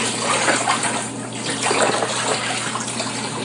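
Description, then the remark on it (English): Scalding hot tap water, left to sit in a jug for about 5 minutes, pours out of the jug in a steady, dense, splashing gush, loud, with a continuous rushing texture that fluctuates slightly over a few seconds. No one speaks. “Now we let it sit there for about 5 minutes, and we dump out the water.”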